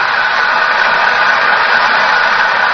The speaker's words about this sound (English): Listen to the applause.